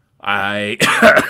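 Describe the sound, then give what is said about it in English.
A stifled cough from a show host who has been sick and is trying to hold it back: a short voiced, throaty hum breaks into a harsh, breathy burst, fairly loud and alone, lasting about a second. “Still fighting back a cough, by the way.”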